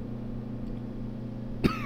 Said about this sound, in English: Oh, don't worry about me. That's just a small little cough.